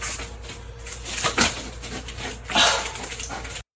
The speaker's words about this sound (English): The dog made two saves with his mouth on a foam puck. And the video went on a little longer, but I don't think he scored.